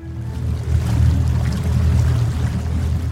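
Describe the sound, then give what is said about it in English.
An excursion boat's engine rumbles low and steady as the boat leaves on a river carrying children for a day's outing, with faint water wash and churning layered on top, continuous, no voices present. “There's the excursion boat just leaving now.”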